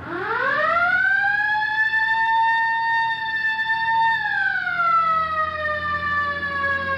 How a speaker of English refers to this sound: All right, hit the siren.